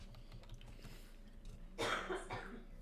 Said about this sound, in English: What? Why'd you look at me? Because I turned away so you coughed in his face.